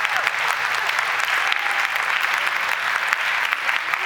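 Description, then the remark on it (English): A crowd claps steadily for about four seconds, a dense, even wash of many hands applauding with no voices standing out. “Give her a big clap, that's the spirit.”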